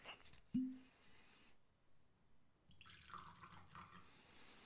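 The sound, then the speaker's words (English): A small sip of Old Forester single barrel straight bourbon whiskey, 90 proof, trickles into a glass, preceded by a soft clink of glass, then a brief gurgling pour and quiet drips, with no talking. “Before I go any further, I'm going to pour me a small sip of this.”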